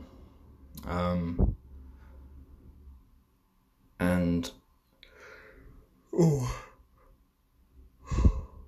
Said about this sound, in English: That's a yawn. I've got that kind of thing where the corner of my mouth is like, there's a cut on it, and it's very frustrating to me, because every time I sort of open my mouth wide, it opens the cut up and it's stinging and not very nice.